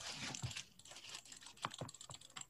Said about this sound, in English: Well, clicking the mouse, that's why.